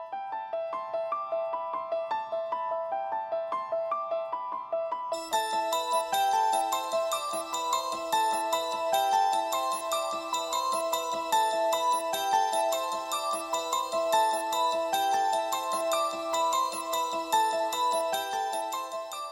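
A bright, repeating piano-like melody in an odd, looping rhythm plays alone, then after about five seconds a fuller layer of sustained organ-like tones and a deeper line joins in, growing denser and louder.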